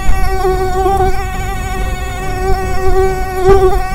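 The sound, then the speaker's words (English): A mosquito's high, whining buzz drones steadily for several seconds, wavering slightly in pitch and loudness as it hovers, with no voices. “The mosquito dey pass pass.”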